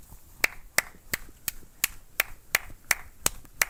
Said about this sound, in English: Yeah. Very exciting. Very motivating. We clap because we're happy. I think, we know that much. Let's get it on clap cam. Clap cam. Count the claps.